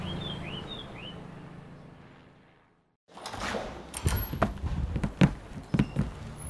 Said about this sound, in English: They slowly marched across the brown linoleum floor until a door creaked open.